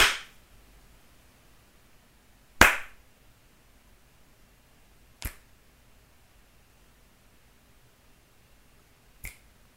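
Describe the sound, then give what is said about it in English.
Four sharp, isolated hand sounds spaced a few seconds apart: two louder slaps followed by two lighter finger snaps, made with both hands, crisp against near silence, with no talking. “Two slaps and two snaps with both hands.”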